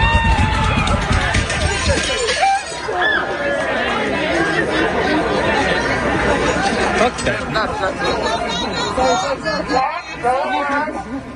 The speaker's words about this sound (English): Protesters smashing glass doors there and protesting outside. Here's what it sounded like.